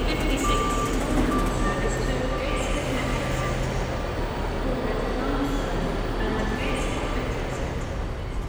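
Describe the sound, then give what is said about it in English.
Steady roar of busy street traffic with shoppers on the hill up to St. James's Park in Newcastle, with a truck's reversing alarm beeping in short, repeated pulses over the rumble and faint background voices. “The traffic, the shoppers, the wheeze of our breath, the shuffle of our feet, the clatter, the thud in our eardrums as we climb our hill.”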